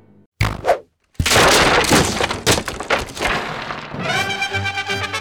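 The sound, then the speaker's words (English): A sharp impact as an arrow strikes huge rocks blocking a path, then a loud crashing burst as the rocks shatter into tiny pieces, tumbling and scattering for several seconds, ending in a ringing, shimmering tone. No one speaks. “And they shattered into tiny pieces, allowing him to pass.”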